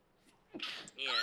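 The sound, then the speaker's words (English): A single sharp, fairly loud sneeze bursting out after a brief quiet inhale, with a voice starting up right after it. “Bless me, Lord.”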